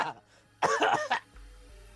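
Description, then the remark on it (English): A short fit of harsh, raspy coughing: one loud, rough burst followed by a quicker second cough, then quiet background hum. “Don't cough up a lung now.”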